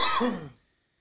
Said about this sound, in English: You okay? Yeah. He just coughs.